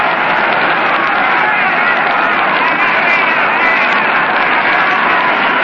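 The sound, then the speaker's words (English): A steady, loud crowd roar fills the whole stretch, a dense wash of many voices cheering together at a baseball stadium during a game, sustained without breaks and with no single speaker standing out. “It dropped forth a roar from the crowd.”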